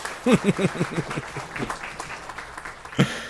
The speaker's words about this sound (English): And that's when the audience applause happens there at the end.